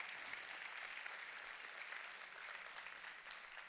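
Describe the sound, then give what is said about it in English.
Steady, sustained applause from a large group applauding the Lord for about five seconds, a dense wash of clapping that stays loud and even throughout with no voices standing out. “Come on, take 5 seconds here and applaud the Lord.”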